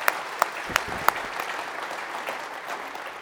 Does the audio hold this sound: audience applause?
yes